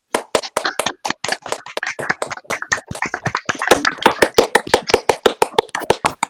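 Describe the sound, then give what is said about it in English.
A round of applause at the end of a question session: brisk, sharp claps repeating several times a second in a steady, even rhythm, lasting about six seconds with no one speaking. “And can we all please give Georgina a round of applause?”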